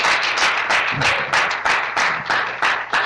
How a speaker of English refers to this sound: But I just want you again just to thank the team involved, from the guys that have set up and the candles, just to make tonight so special. So give them one more round of applause. Well done, team.